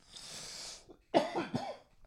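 A breathy rasp gives way to two harsh coughs in quick succession, moderately loud, with no talking around them.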